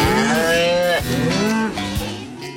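A cow moos loudly, a long low bellow with rich harmonics that rises and falls over a few seconds, with no talking.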